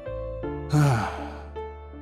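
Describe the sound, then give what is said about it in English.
A single breathy whoosh of air exhaled through the mouth as part of a relaxation breathing exercise, fairly loud, lasting under a second over a soft, steady musical drone. “Exhale through your mouth so that you make a whoosh sound.”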